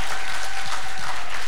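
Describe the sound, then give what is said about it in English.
An audience at Hope Church claps for dads on Father's Day, steadily, a dense wash of many hands with no voices standing out, sustained at a fairly loud level throughout. “Yeah, come on, clap.”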